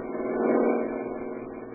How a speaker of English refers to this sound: Here comes a car with only one guy in it.